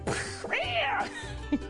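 A cat meows twice, a short cry followed by a longer, drawn-out meow that rises and falls in pitch, with no one speaking.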